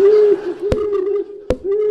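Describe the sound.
A voice holds a long, steady hooting tone in imitation of an owl, lasting about two seconds. Two sharp clicks cut into it midway.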